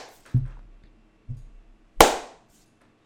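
A single sharp, loud hand clap made to sync audio snaps out after two duller low thuds, then quickly fades to quiet. No one speaks.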